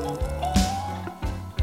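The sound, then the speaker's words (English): Water runs steadily into a sink as pots and glasses are washed, a continuous splashing flow with a faint pipe whine and a few louder gurgling surges. “Run some more water in here.”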